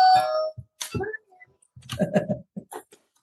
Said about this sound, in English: So I have door number four. And the doorbell.